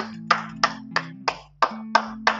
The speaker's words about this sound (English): My personal round of applause.